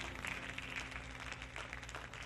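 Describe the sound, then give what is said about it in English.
A church audience clapping their hands to the Lord in praise, a dense wash of many overlapping claps that holds steady throughout, fairly soft, with no voices rising above it. “One more time, if you'll step out of the way tonight and let God have his way, clap your hands one more time to the Lord and lift up a voice of praise.”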